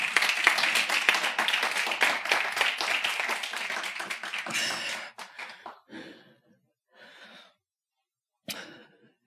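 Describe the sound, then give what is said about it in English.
A crowd gives God a round of applause at a preacher's call, dense, steady clapping for about five seconds, then it thins into a few scattered bursts of claps before dying away. “Let's give God a round of applause, everybody.”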